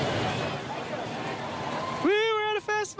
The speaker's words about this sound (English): This is kind of festival-y crowd music that more sounds like nearly Grafton Street on a busy Saturday. Kind of does, yeah.